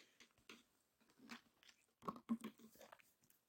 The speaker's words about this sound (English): I got some Propel downstairs. All right, I'm going to take a sip of this.